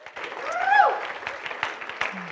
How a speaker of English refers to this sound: We want to say welcome to those who are joining us on live stream as well. Let's all give them a round of applause.